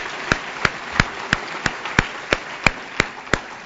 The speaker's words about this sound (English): And that is an accolade that deserves a round of applause.